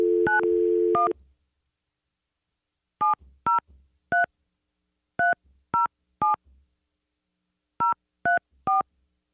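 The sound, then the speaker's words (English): A brief telephone dial tone gives way to crisp touch-tone keypad beeps as a number is dialed for a phone call. The beeps come in quick clusters of about three, three, then four, with short pauses between groups and no voices. “Okay, it's ringing.”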